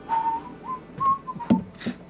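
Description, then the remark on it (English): A dull, breathy whistle of several short tones around one pitch, rising and falling in a loose tune, with soft thumps and rustles underneath and no talking. “Comes around the corner, you hear this like dull whistle.”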